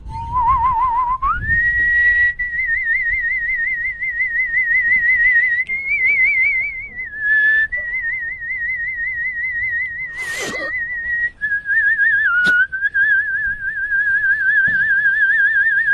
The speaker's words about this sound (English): He's whistling in already. That's out. Did you whistle in there?